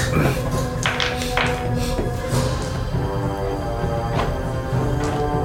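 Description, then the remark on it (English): Several irregular, sharp knocks on a door, sounding over a dense, steady tonal background that continues throughout. “Okay, you knock on the door.”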